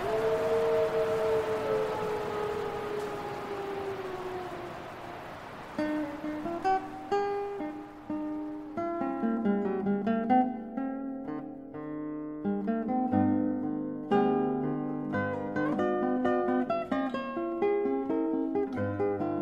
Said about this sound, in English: Timber wolves are large, a subspecies of the gray wolf, and live in packs of up to 20 members. These wolves were recorded by Brian Wright for the International Wolf Center CD, ….